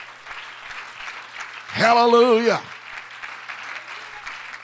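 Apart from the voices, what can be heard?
audience clapping in praise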